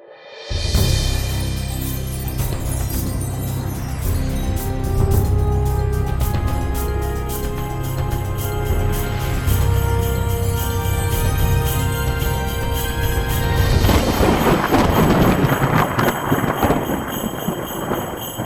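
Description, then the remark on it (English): Sleigh bells jingle steadily and loudly for the whole stretch, a bright, dense shimmer of rapid metallic shakes with a low rumble underneath and no voices. “Hear those sleigh bells? I hear sleigh bells.”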